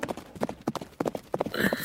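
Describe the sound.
A voice imitates galloping horse hooves with a quick run of rhythmic clip-clop clicks, fairly loud, about nine sharp taps in under two seconds, while the speaker pretends to gallop carrying someone on their back.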